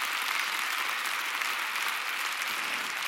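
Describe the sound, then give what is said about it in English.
An audience applauds an announced rise in giving to $16.5 million a year: a dense wash of many hands clapping at once, sustained and fairly loud for a few seconds, with no voices standing out. “But I know why you didn't immediately start clapping.”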